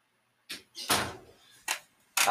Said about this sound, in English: could you close that door for me?